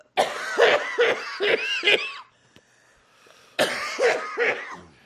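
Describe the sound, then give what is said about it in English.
A harsh, raspy coughing fit after taking a hit from a pipe: a rapid run of four or five hacking coughs, a brief pause, then another burst of several more rough, wheezy coughs. “Little slurp slurp and the cough.”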